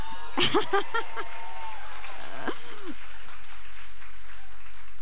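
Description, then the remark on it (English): An audience applauds a couple standing up on their 51st anniversary, a dense wash of clapping with a brief cheer near the start, then the steady clatter carries on at a softer level for several seconds. “Yes, please clap for them.”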